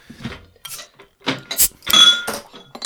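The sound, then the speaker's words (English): A cider bottle being opened: several sharp glassy clinks and rattles, followed by a brief bright hiss of released fizz, all fairly loud with no talking. “I do like the sound of a good bottle opening, to be fair, though.”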